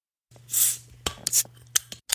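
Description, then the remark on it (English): A shaken beer is cracked open: a burst of bright, sputtering fizz sprays out, a little landing on a laptop keyboard, followed by several sharp clicks and short hissy spurts over a low steady hum. “I'm nervous about opening this one because it was moving around quite a bit. I'm going to open it away from my laptop.”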